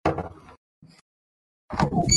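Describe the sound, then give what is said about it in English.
Loud clattering as a microphone and other objects get knocked over, a messy crash followed by a brief silence, a small bump, then another burst of rattling and thudding. “And also me knocking over my microphone.”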